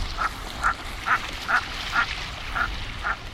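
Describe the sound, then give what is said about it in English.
A series of seven short, evenly spaced common merganser calls, croaking and moderately loud, repeating roughly every half second over a soft background hiss with no voices. “Around this time of year, common mergansers are flying south from Canada to wintering grounds in the lower 48.”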